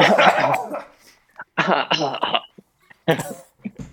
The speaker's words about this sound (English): Yeah. Cough break. We're out.